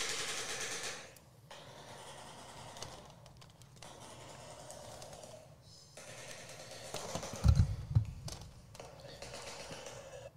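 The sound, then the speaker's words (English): A bird gives harsh, rapid clattering calls like machine-gun fire, in long rattling bursts broken by brief pauses, with a louder, heavier burst toward the end. “No, that's the bird making the noise.”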